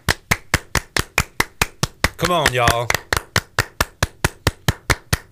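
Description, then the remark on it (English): Steady, rhythmic hand claps from a group of people keep a fast even beat, loud, pausing briefly while a voice calls out before the clapping resumes. “Everybody clap your hands.”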